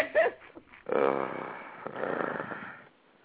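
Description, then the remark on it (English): Loud, rough breathing gusts straight into a microphone, a short huff followed by a long, raspy, snore-like exhale that tapers off. “That's you breathing on the mic. Yeah, it sounds like somebody breathing really hard, man.”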